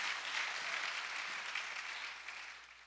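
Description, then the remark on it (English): A crowd claps steadily for a few seconds in a round of applause for Jesus, a dense wash of many hands applauding, slowly tapering off toward the end with no one speaking. “So let's give Jesus a round of applause.”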